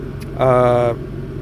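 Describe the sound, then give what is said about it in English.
A car's air conditioner hums and whooshes steadily in the background, with a brief voiced sound from someone rising over it for about half a second midway through. “I'm in my car, so that's what you hear in the background, the air conditioner.”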